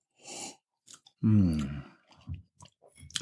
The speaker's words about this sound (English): You've been catching me mid-sip. I've been doing that on purpose. All episode, this episode. My bad.